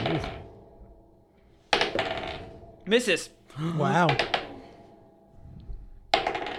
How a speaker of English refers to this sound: A lot of dice rolling.